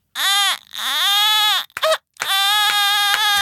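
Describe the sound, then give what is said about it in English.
A person imitates a crying baby with a loud, wailing voice: a drawn-out cry, a short hiccuping break, then a long sustained wail, each rising and falling in pitch. “Oh, the only thing they can do is cry on our subreddit, which they do constantly.”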